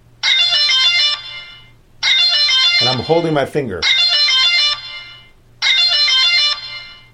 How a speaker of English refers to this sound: So let's say, for example, you're getting attacked and you do this horn thing.